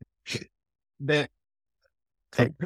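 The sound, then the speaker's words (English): Three quick sneezes from sinus allergies flaring as the sun goes down, each a sharp, breathy burst separated by short silent pauses, the last one followed by a brief extra catch of breath. “Sorry. Bless you.”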